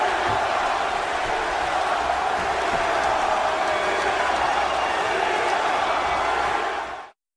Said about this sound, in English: And the show goes off the air with him like at the top of the stairway in the middle of the fans, all screaming, holding up the title, kind of breathing deeply, nodding like, yeah, I did this and I'm out.